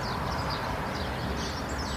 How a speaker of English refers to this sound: I just can't believe how much I'm enjoying just listening to the birds and listening to the wind.